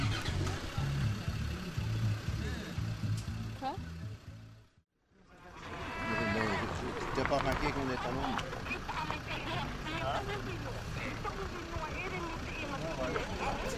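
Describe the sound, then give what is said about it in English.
Steady traffic noise of many cars driving past on a quiet road up a mountain on Moorea as people flee an expected tsunami, engines humming and revving, with a brief near-silent gap early on and indistinct voices mixed into the din. “there are cars and cars and cars going past.”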